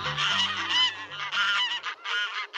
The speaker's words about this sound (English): Is any bird more ordinary, more unlikely to draw praise, than a barnyard goose honking and waddling about the farm? The humble goose once had a much higher profile.